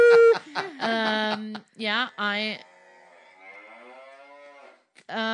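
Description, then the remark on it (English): A person imitates a cow, letting out several loud, drawn-out nasal moo sounds in quick succession, followed by a quieter trailing vocal tone and another short burst of voice at the end. “You can see this cow in a movie.”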